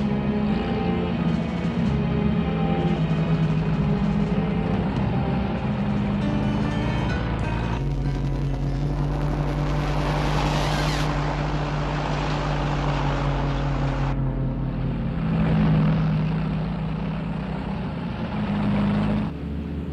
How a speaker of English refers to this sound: So our construction crew here is now driving some other trucks. Not exactly sure what they're doing here. No. But I think they have the explosives, is my guess.